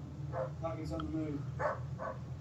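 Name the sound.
dog yelping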